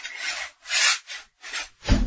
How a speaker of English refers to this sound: We're going to open this vault door here and see what kind of archives we can dig out from the Sean Teschner Show Ear Candy Vault. See if this door will open.